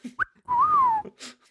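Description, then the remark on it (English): A person whistles an imitation of R2-D2's droid beeps: a short high chirp, then a longer warbling tone that rises and falls, followed by a brief breathy burst. “Reminded what R2-D2 sounds and you admit defeat.”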